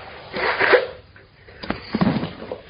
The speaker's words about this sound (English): Last time, excuse me, I'm about to sneeze. Allergies.